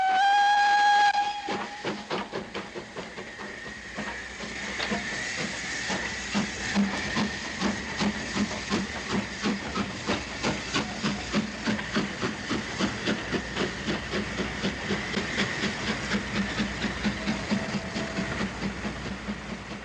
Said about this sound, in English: The ambience of being here at the thriving and thrustling Waterloo Station. Here we go. One of England's few remaining steam trains leaves Waterloo Station and departures are announced.